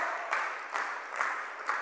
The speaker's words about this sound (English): And we want you to be saved. Clap your hands and say a big amen.